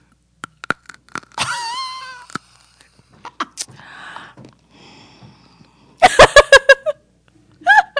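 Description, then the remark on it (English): Chewing food for an ASMR effect: a string of sharp, wet clicks and smacks in uneven rhythm, broken by squeaky, whining vocal noises, with a rapid burst of loud smacks near the end. “I wish I had something else to chew on because that didn't have the full effect.”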